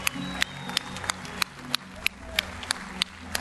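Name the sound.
audience cheering and clapping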